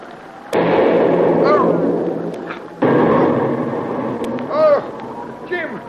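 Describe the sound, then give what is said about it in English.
Two loud artillery shell blasts erupt near a boat a couple of seconds apart, each leaving a heavy rumbling roar that slowly fades, while rising and falling voices cry out over the din. “The concussion from that last shell knocked you down, that's all.”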